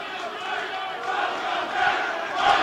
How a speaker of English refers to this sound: That right there. Like, he has to stop because they start chanting, welcome back. Oh, that's par for the course wrestling. They get arenas going like that on chants.